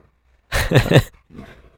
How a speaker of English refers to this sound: My dogs are wrestling in the living room.